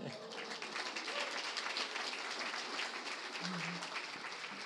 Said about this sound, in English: You're the most important person. Can you get up and can we applaud you?